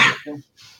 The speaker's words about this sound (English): Oh, here we go. The cough's back.